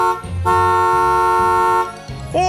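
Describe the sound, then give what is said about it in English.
A loud car horn blares in one sustained honk lasting over a second, then a second honk begins just as the sound cuts off, with a low rumble underneath. “We'll get the car horn noise installed straight away.”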